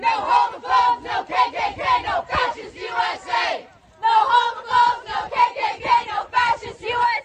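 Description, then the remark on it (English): Riverview High School students chant a rhythmic protest slogan in unison at the statewide Don't Say Gay walkout in Florida on March 3rd, a crowd of young voices repeating it twice with a brief pause between, loud and steady with a clapping-like cadence. “That's the sound of Riverview High School students who joined in on statewide Don't Say Gay walkout in Florida on March 3rd.”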